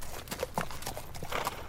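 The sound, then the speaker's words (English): Horse hooves clip-clop in a loose, uneven rhythm as horses are saddled up, a handful of hollow knocks at moderate volume with no voices over them. “While Dottie saddles up her horses, why don't we take a little break from our equestrian adventure?”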